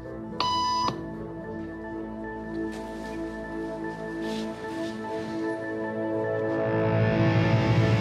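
A single short electronic beep, a tone used in a hidden camera experiment on conformity, sounds clearly near the start, a bright steady tone over a low room hum, followed by quiet ambience that gradually swells with soft background noise.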